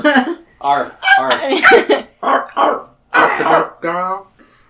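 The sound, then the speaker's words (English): A person imitates the bark of a poodle named Fifi with a rapid string of six or seven loud, voiced yaps and yelps, slightly uneven in rhythm, with brief pauses between them. “It's a familiar bark of your beloved poodle, Fifi, you call.”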